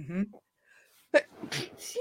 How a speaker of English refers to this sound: Bless you. Thank you.